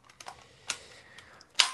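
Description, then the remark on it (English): A short run of crisp mechanical clicks at uneven intervals, ending in one louder, sharper snap, as the dial of a braille label maker is turned back notch by notch to find the letter G. Fairly quiet, with no talking. “I'll shift it back until I can find the letter G.”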